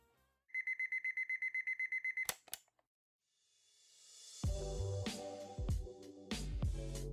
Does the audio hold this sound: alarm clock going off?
yes